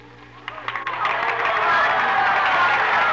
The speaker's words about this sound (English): Anyway, in my dream, I heard cheering and applause in the distance. The mist suddenly disappeared, and I was standing on a huge stage. I had just made a speech. The cheers and applause were all for me.